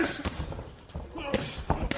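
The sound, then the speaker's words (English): Several sharp, heavy punches thud irregularly and loud as they land on boxers' bodies during a boxing match held with no crowd because of COVID-19, with faint voices murmuring in the background between the hits. “You can really hear how loud the punches are landing on the boxers' bodies.”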